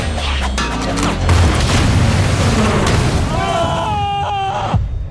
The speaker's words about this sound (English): I'm gonna put this propane tank at them! You shoot it, you blow up their car!